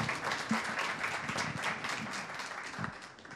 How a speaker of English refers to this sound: So everybody give them a round of applause one more time.